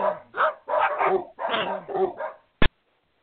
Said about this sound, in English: Whew, that was a close call. That must have been the dog walker taking the dogs out before bed.